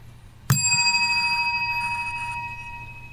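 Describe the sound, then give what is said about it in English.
A single bright bicycle bell ding, used as a signal for going off on a tangent, rings out clear, its metallic tone shimmering and slowly fading over a few seconds. “Graduating top of the class, the tangent bell, keeping all of us in line.”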